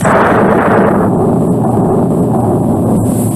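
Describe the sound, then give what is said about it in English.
A loud thunder clap from an approaching storm: a broad, crashing burst that settles into a heavy, low rumble rolling on for several seconds, with no voices over it. “All right, anyway, I think it's coming up a storm.”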